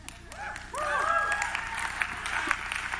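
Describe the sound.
A burst of hand clapping, steady and fairly loud for a few seconds, with rising and falling voices chiming in over the claps partway through.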